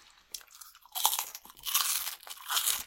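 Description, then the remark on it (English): Crunchy chewing of sea salt and cracked black pepper pork rinds, small batch recipe number 16: bright, crackly bursts of crunching come in several rough waves, fairly loud, with brief quieter gaps between bites and no talking. “Our sea salt and cracked black pepper pork rinds contain 30% less sodium than our regular salt and pepper pork rinds. Take your crunch to the next level.”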